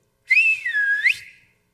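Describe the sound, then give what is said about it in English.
A person whistles a single clear, loud call to summon the children to a family meeting at home, a tone that dips down then swoops back up in a smooth curve, lasting about a second with no talking around it. “hey, will you whistle for the kids?”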